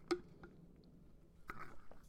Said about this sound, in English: I'm going to take a sip. It's a really cute bottle.